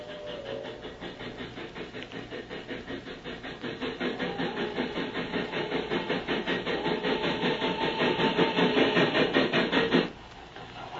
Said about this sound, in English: Hold on. Listen, will you? There you are now. There's the first train. Just hitting the grid. Yes, that'll be her, all right. Sure, she'll be in the cutting in a minute.